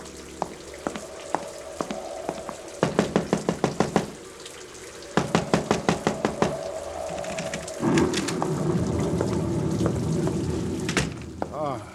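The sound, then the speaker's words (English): A steady rain storm hisses throughout, swelling louder near the end, while bursts of rapid knocking on a door ring out twice over the downpour. “Brother, what a storm.”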